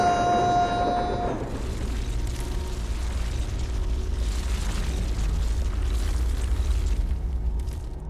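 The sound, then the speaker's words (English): A sharp, crackling lightning strike with a sizzling tone opens, called down by a sorcerer's command to seal a cave, then gives way to a deep, steady earth rumble that rolls on loudly for several seconds before easing off at the end. “Strike lightning! Tremble, O Earth! Seal this insolent whelp away from my sight!”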